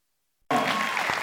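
A church audience breaks into steady applause at a morning service after a brief silence, many hands clapping together in a dense, even wash of sound that holds loud to the end, applauding a banana pudding contribution to a building fund.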